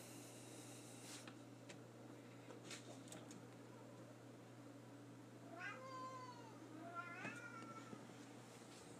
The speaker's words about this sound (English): What are you meowing about? I heard you over there. You're missing your mommy? Yes, you're missing her, huh?